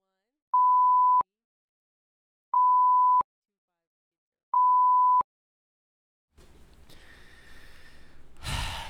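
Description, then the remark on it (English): Three loud, steady censor bleeps over spoken numbers, each under a second long and evenly spaced with silence between them, followed by a few seconds of breathy, muffled vocal noise. “I will say it, but you got to bleep it out.”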